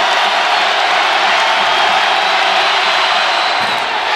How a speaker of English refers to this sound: The crowd's going nuts. Here's why: if he misses the second one, everybody in this house gets free bacon.